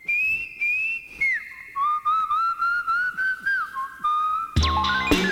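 A clear whistled melody glides and wavers over a steady, pulsing beat, then a fuller burst of bright instrumental music crashes in near the end.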